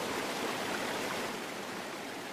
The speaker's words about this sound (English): And the first thing you notice is you come around this corner and you hear a waterfall. Underground waterfall.